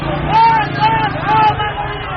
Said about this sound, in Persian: معترضان به نتیجه انتخابات دهمین دوره ریاست جمهوری ایران پس از برگزاری این انتخابات در تهران و شهرهای دیگر ایران به خیابان آمدند. در اصفهان صدای پراکنده شعارهای مردم با صدای موتورهایی که لابلای جمعیت آمدند در هم می‌پیچد.